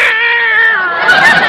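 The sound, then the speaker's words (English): A single long, drawn-out meow from a cat named Minerva, loud, wavering in pitch and swelling slightly toward the end, with no talking around it. “Meow, meow, meow, meow.”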